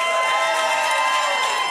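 An audience claps and cheers in a dense, steady wash of applause with bright shouts mixed in, staying loud and continuous for the whole short stretch.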